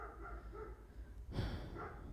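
Dogs barking, a muffled, steady commotion with a louder burst partway through, with no one speaking.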